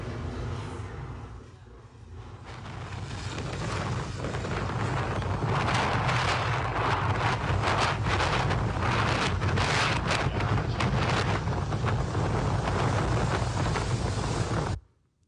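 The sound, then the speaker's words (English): Loud, steady roar of stormy wind buffeting the microphone at the Outer Banks, with crashing ocean surf churning underneath, sustained throughout without any voices. “And when the storms come, it's game over.”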